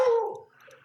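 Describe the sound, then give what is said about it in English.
A single bark from a female pet dog rings out, its pitch sliding down as it fades, followed by a softer, rough trailing noise with no talking. “Yeah, my dog agrees.”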